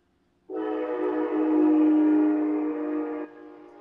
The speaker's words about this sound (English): Sorry, there's a train.